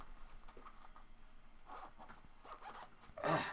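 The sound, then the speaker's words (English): A zipper on a small waist pack is pulled open in a few short, scratchy tugs, ending in one louder, longer rasp; no one speaks. “I got a pack here. I got a waist pack. What do you got in your pack? Okay, and I will show you.”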